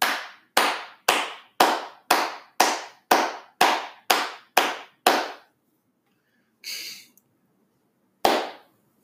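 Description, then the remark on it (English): A slow, deliberate sarcastic clap: about ten loud, evenly spaced hand claps, then a pause, a brief rustle, and one last single clap. No one speaks. “That's a sarcastic clap, by the way.”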